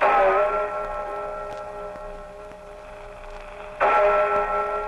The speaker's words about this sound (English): But upon reaching England, we set our blimp down lightly opposite historic Westminster Abbey, where we pause to listen to the famous tones of Big Ben as it tolls the hour.